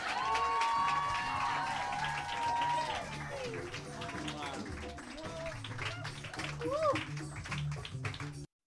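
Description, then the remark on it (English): A large crowd claps and cheers loudly and continuously, with whooping shouts and high whistles rising over dense applause before it cuts off abruptly. “Okay, so please start clapping right now. Really go crazy.”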